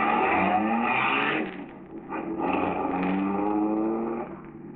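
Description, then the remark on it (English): A car engine runs with a steady, loud droning hum that dips briefly midway, then swells again as the first car, driven by a friend of Marola's, starts down the road with its headlights on. No one speaks. “there's a quick flicker of light, and the first car, driven by a friend of Marola's, starts down the road.”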